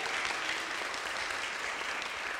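A crowd claps steadily, a dense, even patter of many hands sustained at a consistent loudness throughout, with no voices standing out.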